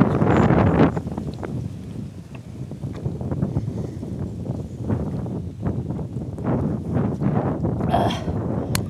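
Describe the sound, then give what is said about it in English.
Strong wind buffets the microphone of a person walking outdoors in a steady, heavy roar, with rough low-pitched gusts and crackling bursts throughout, loud and continuous from start to finish with no voices. “I mean, I'm walking in a freaking wind tunnel.”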